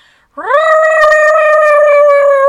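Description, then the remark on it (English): A person's voice imitates a cat yowling in heat, a loud sustained wail that rises quickly then holds a steady, strained pitch for about two seconds. “That's the exact noise my cat makes when she's in heat, lads.”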